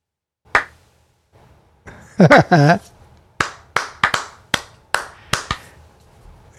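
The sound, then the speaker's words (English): A clap out for Sean McVay: a single sharp hand clap, then a brief burst of voice, followed by a run of about eight crisp claps in a slightly uneven rhythm, fairly loud against a quiet background. “All right, a little clap out.”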